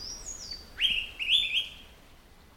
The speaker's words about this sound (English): The critically endangered Araripe manakin, recorded by Garrett Vinn of the Cornell Lab of Ornithology